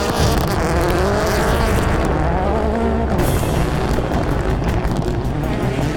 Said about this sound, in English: Down the main straight, the Subarus are neck and neck.